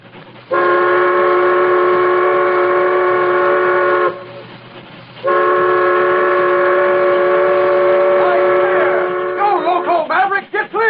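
A supply train's whistle sounds two long, loud, steady blasts separated by a brief pause as the train approaches, with the tone wavering and sliding as the second blast trails off.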